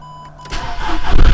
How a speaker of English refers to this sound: Oh my god, the car's just started by itself. Fucking hell, the lights are on the dashboard, it's going crazy.